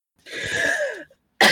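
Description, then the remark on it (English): A long, rough, raspy cough, followed after a short pause by another harsh cough that starts abruptly and sounds just as loud. “and haul them all out of the elemental, and they land on the floor next to you, coughing.”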